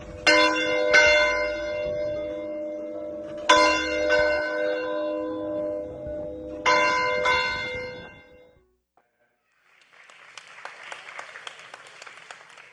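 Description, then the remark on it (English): A Methodist church bell, once hung in a church building finished about 1900, rings with three loud, resonant strikes a few seconds apart, each leaving a long humming decay, followed after a short pause by scattered applause from a crowd. “And after the fire, the third building was rebuilt and finished about 1900, and this bell was in it.”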